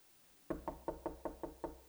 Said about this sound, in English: Knock on the door. Old gal comes to the door. And that's Peter.